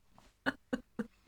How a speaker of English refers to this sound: Bless you.